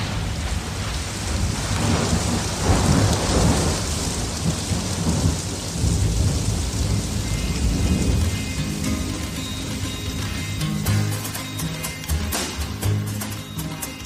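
Steady heavy rain hisses throughout while deep rolls of thunder rumble beneath it, swelling loudest in the first half before easing into a dense patter of falling drops.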